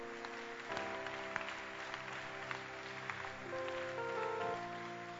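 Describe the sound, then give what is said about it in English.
An audience claps their hands in a steady, dense patter over sustained organ or keyboard chords, the applause continuous and moderately loud throughout without anyone speaking. “You can clap your hands.”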